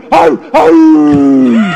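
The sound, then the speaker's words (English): A dog gives two quick, sharp barks, then a drawn-out whining howl that slowly falls in pitch. The sound is fairly loud, with no one talking over it. “Cowboys Tone Diggs barking off microphone enough so you could hear it on microphone.”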